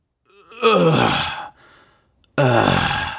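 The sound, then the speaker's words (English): A person lets out two loud, strained groans, each falling in pitch like the effortful sound of getting up from a chair, separated by a brief quiet breath. “It's the sound you make every time you get up out of a chair, or out of your car, or out of bed in the morning.”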